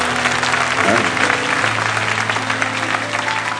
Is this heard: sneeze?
no